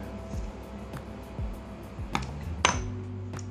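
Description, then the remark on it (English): Small shot glasses of Mama Juana clink together once in a toast, a sharp tap with a short bright ring, surrounded by soft handling bumps and low background rumble. “So cheers. You just chug it, right?”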